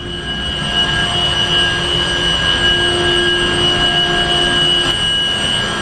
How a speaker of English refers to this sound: I'm about to open the door, and you'll notice that it's quite loud in here because our 500-ton centrifugal chiller is operating to keep the building cool during the day.